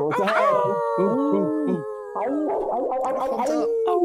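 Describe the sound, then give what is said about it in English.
Several people howl together like wolves, long wavering cries overlapping and sliding in pitch, loud, with a brief break before a second chorus of howls. “Start off with a little bit of wolf owl.”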